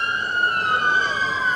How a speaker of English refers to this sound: It's kind of one of those nights. There's been a lot of sirens tonight.